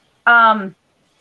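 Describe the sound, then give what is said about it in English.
A single short kitten meow, loud, with a slightly falling pitch that trails off after about half a second, heard alone with silence around it. “this is now officially the Cheesecake and Kitten Show”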